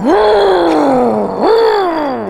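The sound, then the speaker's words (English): A voice mimics the rev of a car, which sounded like the car taking off: two loud, droning swells, each jumping up in pitch and then sliding slowly back down, with no other talk. “What did the rev sound like? I truly, it sounded like the car was, like, taking off.”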